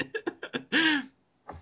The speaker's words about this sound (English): He's coughing, guys.